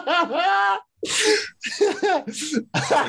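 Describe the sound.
A loud run of sneezes from a man, about four in quick succession, each a breathy burst preceded by a voiced, straining intake, falling into a steady, almost rhythmic pattern.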